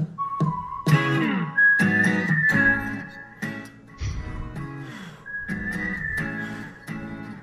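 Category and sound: human body sound, person whistling a tune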